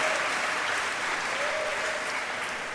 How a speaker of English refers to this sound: Clap your hands